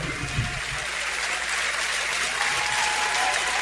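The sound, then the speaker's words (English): A large, near-capacity stadium crowd at a night game between Jacksonville and the Jets cheers and applauds in a steady, dense roar that stays loud and even throughout, with no clear voices standing out from the mass of noise. “Both sides, good crowd on hand here tonight. A near-capacity crowd.”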